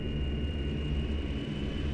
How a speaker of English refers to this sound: In black and white, a light-haired man speaks to the camera. Strangely enough, the only sound to come through is a buzzing hum.